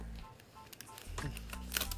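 A phone notification sounds: a few short electronic beeps and tones in quick succession, moderately loud, over a low background hum with no one talking.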